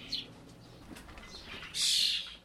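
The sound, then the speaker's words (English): Birds in the flyway room of a bird rehabilitation aviary: a short chirp opens, then faint rustling gives way to a loud, hissing flurry of flapping wings that lasts under a second before fading. Nobody speaks. “So this is the flyway. And in this room are all the different birds.”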